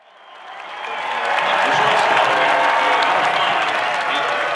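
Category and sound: crowd, baseball stadium crowd cheering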